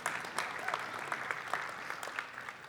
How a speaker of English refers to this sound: Clap, clap, clap, clap, clap. Time for clap.